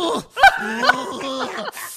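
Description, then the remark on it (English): A person makes a drawn-out growling noise with their voice, a loud, moaning rumble that wavers in pitch and breaks into a few sharp pulses before trailing off. No words are spoken. “Let me hear the growl again.”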